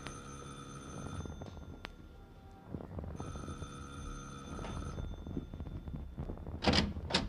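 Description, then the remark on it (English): A doorbell rings in two sustained bursts of steady, bright harmonic tones, each lasting about two seconds, followed by a couple of brief hissy clicks and rustles. “You ring the bell this time, Danny.”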